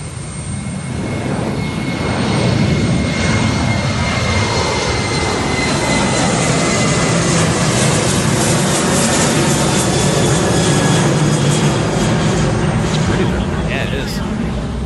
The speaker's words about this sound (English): But basically it showed the one airplane on the runway taxiing and the other airplane coming in for landing.